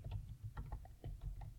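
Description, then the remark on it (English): Quiet, irregular clicking of computer keyboard keys, about a dozen soft taps in a quick uneven rhythm, over a steady low rumble in the background. “I'm silently typing and staring at you.”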